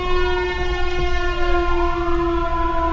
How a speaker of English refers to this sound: Boy, we're having sirens going by here.